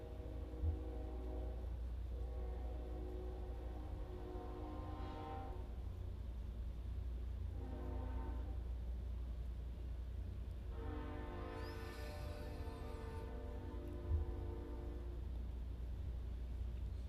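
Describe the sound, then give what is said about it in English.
A train horn sounds in several long, harmonic blasts, one short and two sustained, over the constant low rumble of a passing train. No one speaks. “I'm going to wait till the train's done passing.”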